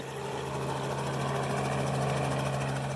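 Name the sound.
helicopter blades overhead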